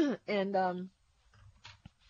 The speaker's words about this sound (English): Folks, excuse me, I just have to keep clearing my throat. Something's settling in there.